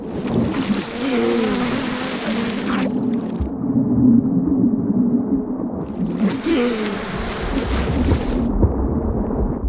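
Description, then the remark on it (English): A dense, droning buzz of a bee swarm swells and surges continuously above a person swimming underwater, the bees attacking whenever they surface for air; the buzz sounds muffled at moments as if heard from underwater, with rushing noise washing over it. “You try desperately to stay underwater, but the bees, following above you like a storm, lash out every time you reach up for air.”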